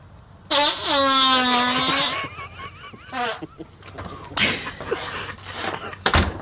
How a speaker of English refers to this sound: He shuts the door.